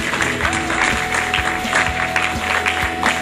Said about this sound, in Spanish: aplauso al Señor.